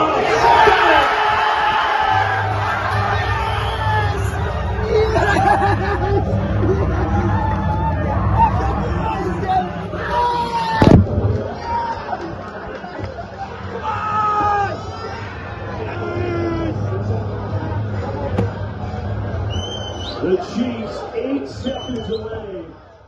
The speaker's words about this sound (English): The new intro is just me screaming for 30 seconds.